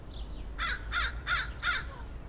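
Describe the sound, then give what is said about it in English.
Four harsh, rasping caws in a steady rhythm from crows flying overhead above a churchyard wild area, loud, with a low background rumble and no talking. “She pointed above them, and they heard the familiar rough voices and saw the black wings go by.”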